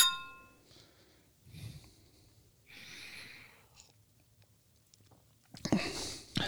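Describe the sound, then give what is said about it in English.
A quick clink of glasses of ale raised in a toast rings out at the start and fades with a short bright tone, followed by quiet sipping, swallowing and breathing sounds, then a louder rustle at the end. “So cheers. Cheers.”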